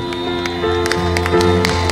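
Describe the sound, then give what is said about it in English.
Scattered hand claps of praise to God from an audience ring out at irregular moments over steady, sustained music chords, the sharp claps standing above the held tones without settling into a beat. “Come on and give him a hand clap of praise in this place today.”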